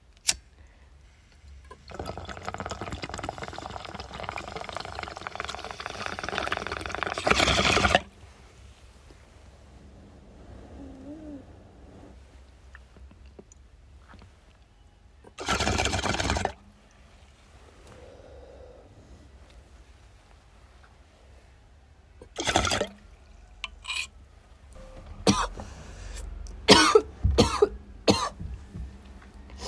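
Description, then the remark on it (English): A long, steady bubbling from the first bong hit of the day runs for several seconds, followed by loud, harsh coughing in bursts: one right after, another later, then a cluster of rapid coughs near the end. “First rip of the day always kills me.”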